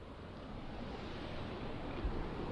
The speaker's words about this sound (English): Now we're at a feature of the monastery grounds here, a series of waterfalls along a fairly significant stream, falling away and running down into the Little Brosna. It was created by our brother Ignatius about 40 years ago, I'd say, or maybe 50.